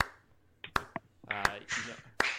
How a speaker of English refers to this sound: First off, I think a round of applause is in due.